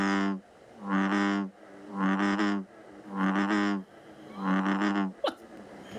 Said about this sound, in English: Is it a sea creature? Kind of, sort of. It's an amphibian. It's an amphibian.